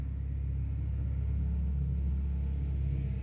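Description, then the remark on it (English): A bus rumbles by outside, a deep, steady low-pitched engine drone that holds at an even level for a few seconds, with no talking over it. “Oh, there goes another bus.”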